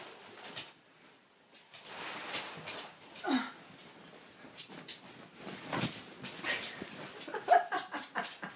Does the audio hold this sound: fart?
no